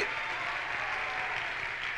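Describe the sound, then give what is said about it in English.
An audience in a church sanctuary clapping their hands together during worship, a dense, steady wash of applause that stays loud and even throughout, with no voices standing out. “I said, clap your hands, all you people, and shout it to God.”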